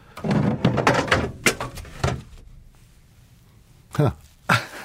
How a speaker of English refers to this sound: Something just fell off the shelf in here. It was an elk antler.